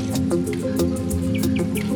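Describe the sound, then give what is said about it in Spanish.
A tiori bird, a small lead-grey bird with a yellow breast and black streaks on its head, gives a few short, high chirps in quick succession, fairly faint against a steady low hum and scattered soft clicks, with no one talking. “¿Pájaro? Pajarito. Tiori se llama.”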